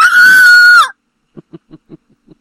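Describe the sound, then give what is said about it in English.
A shrill, high-pitched screech like a monkey's voice on helium, held steady for under a second and sliding down at the end, then six soft, low, clipped grunts. “What does a monkey's voice sound like on helium?”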